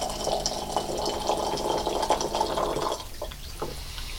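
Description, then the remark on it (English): Pu'er tea, brought back from a 500-year-old tree in China, pours steadily into tiny cups for about three seconds, a bright liquid trickle that cuts off and leaves a few faint drips and clinks. “pours us tiny cups of pu'er, a tea he just brought back from a 500-year-old tree in China.”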